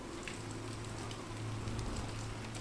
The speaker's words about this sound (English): You stand in the frame of French doors and lean your head against the glass pane as rain streams down the window.